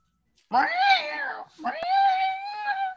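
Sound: cat meowing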